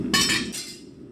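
Metal clanking in a blacksmith's shop as a blacksmith turns an ordinary railroad spike into a bottle opener: two sharp, bright strikes a fraction of a second apart, each leaving a high ringing shimmer that fades over the low, steady roar of the forge.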